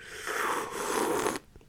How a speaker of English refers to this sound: Now I need a sip of my freaking tea.